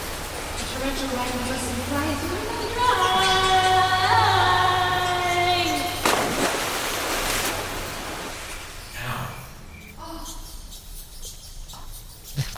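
Water rushes and swirls down a drain in a loud, noisy burst that gradually fades to a low, hollow wash, preceded by a wavering, high-pitched squealing tone.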